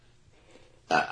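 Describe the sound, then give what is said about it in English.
A single short burp erupts abruptly after a near-silent stretch, loud, with a brief throaty rasp. “I farted out of my mouth.”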